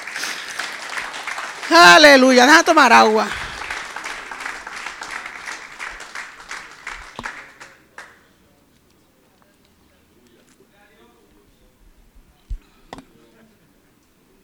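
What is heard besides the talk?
audience applauding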